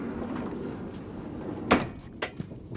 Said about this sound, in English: I'll go give a polite knock on the door.